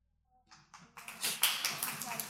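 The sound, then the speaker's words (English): A couple of separate claps start things off, then a group quickly joins in with dense, steady applause that holds at a fairly strong level to the end. “If we clap after everyone, it's going to take more time.”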